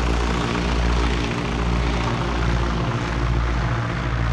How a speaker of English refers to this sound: The Spartan aircraft chugged above the crated rice paddies below, on its way to the relative safety of neighboring Thailand.